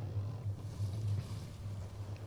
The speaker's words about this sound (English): So as the ship is kind of slowly jumping over the waves